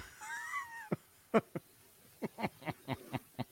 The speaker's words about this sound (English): The cat's going nuts.